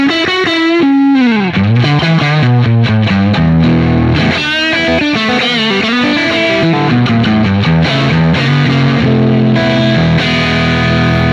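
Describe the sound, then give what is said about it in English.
A lightweight hardtail electric guitar with a Paulownia wood body, played with distortion, plays a loud, sustained melodic run with bends and quick note changes, thick and saturated, continuous for the whole stretch with no voices. “I put some distortion on it.”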